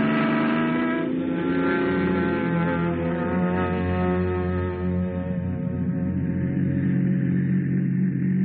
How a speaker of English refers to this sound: Ah, vacation, here we come. Come on, car, let's go.